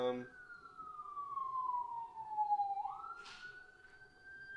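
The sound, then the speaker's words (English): An emergency vehicle siren wails outside in a city, its pitch sliding slowly downward and then sweeping back up, carrying clearly over a low rumble of background noise. “Oh, there's a siren. which you're definitely picking up.”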